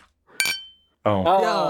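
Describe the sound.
A single bright clink of glass rings out like a chime, its high tone lingering and fading for about half a second before a person starts talking.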